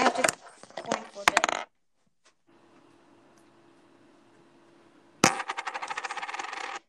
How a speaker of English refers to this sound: You know what? I'm going to have to coin flip it.